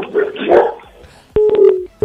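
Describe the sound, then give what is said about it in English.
Dogs bark over a phone line, a few sharp, tinny barks heard through a narrow, compressed connection, fairly loud with brief pauses between them. “Are we talking to you or to your dogs?”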